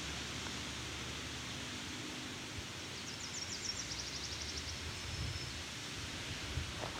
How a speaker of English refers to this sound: We can review this after and see what it is and why it is that bird. My guess is though, is that I'm listening to a Nashville warbler.